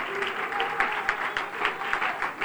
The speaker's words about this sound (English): Give the Lord a good hand clap of praise. Come on now, this is for Jesus.